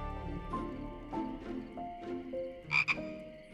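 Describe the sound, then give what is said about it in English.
A frog croaks in a series of raspy, guttural calls, several in a row with a quick double croak near the end, fairly loud against a quiet background. “The frog was gooey in Tabitha's hands, struggling to wriggle free.”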